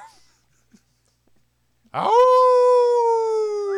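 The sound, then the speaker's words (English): A person lets out a long, loud mock wolf howl, starting with a rising yelp and then holding a steady, sustained tone after a moment of near silence. “Howling at the moon.”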